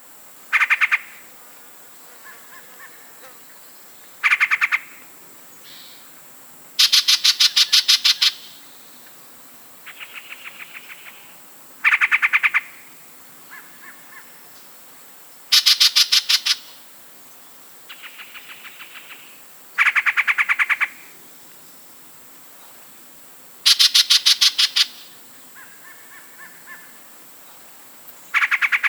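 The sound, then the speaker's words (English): A male Yellow-breasted Chat sings loudly, tossing out separate bursts of harsh croaks, rapid rattling notes and whistles, with phrases repeated every few seconds and brief pauses between. “During this time of year, the males are extremely chatty, which is where they get their name, producing an eclectic song that includes croaks, whistles, and repeated phrases.”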